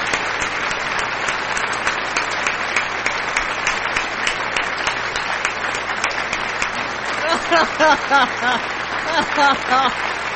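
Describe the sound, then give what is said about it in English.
Steady applause sound effect, a dense wash of many hands clapping that carries on for the whole stretch; toward the end a voice starts talking over the continuing clapping. “It won't stop clapping.”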